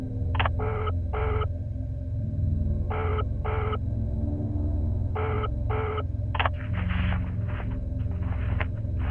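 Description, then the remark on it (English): A phone line ringing in repeated double bursts, each pair separated by a short pause, over a steady low hum, before a click and crackly line noise as an operator connects the call through to the police. “Certainly, I will connect you now.”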